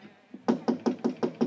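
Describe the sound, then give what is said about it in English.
A quick series of six firm knocks on the wooden bedroom door of Forbes, evenly spaced, following a faint softer tap, with no voices. “I walked to Forbes' bedroom door.”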